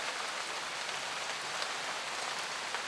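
Steady, even rainfall with a dense hiss of drops pattering on a surface, continuous, no voices or other sounds breaking through.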